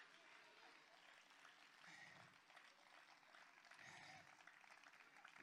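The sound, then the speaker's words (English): A church audience claps continuously with faith for about ten seconds during a sermon, a dense, steady wash of hand claps. Voices call out and shout praise to Jesus underneath, rising in brief swells. “Just take 10 seconds and clap your hands with faith for a moment.”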